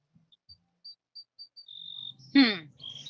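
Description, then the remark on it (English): Birds chirping: a run of short, high-pitched chirps at a fairly steady pace, followed by a longer sustained trill and a sudden louder, buzzy call that sweeps downward. “The birds are chirping.”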